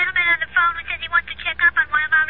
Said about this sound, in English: A moment later, the phone rings in the office of Clark Kent, who, as we know, is Superman.